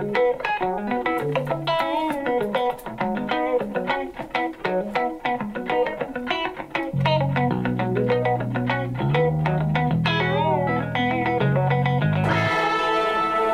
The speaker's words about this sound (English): And then we went, there was a whole thing about the Mouton biphaser and how they got the sound.